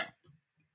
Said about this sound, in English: I've never done that before on the podcast. Very cute. I've been doing those my whole life, the little hiccups.